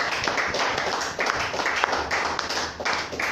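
A crowd claps hands together to Jesus in a steady rhythm, the dense slaps fairly loud, with faint voices mixed underneath.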